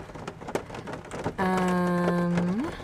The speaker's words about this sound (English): Okay, hopefully the rain is not too loud.